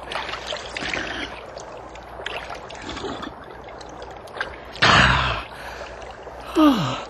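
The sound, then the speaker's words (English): A man drinks from a gently trickling stream: steady water burbling, a sudden splashy gulp, then a sharp gasp of relief near the end. No talking. “Whoever thought I'd get stuck in a place where a drink of water would be so good?”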